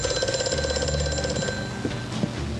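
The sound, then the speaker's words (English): A telephone rings with a fast, trilling bell for about a second and a half, then cuts off, leaving a low background hum with a couple of small knocks. “Nothing happens when you answer the phone.”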